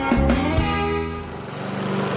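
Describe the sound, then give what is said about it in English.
A lawn mower engine runs steadily and fairly loud as the lawn is mowed, a buzzing, rattly drone with a brief rev near the start that settles into an even hum, with no voices. “I hate mowing the lawn over and over and over again.”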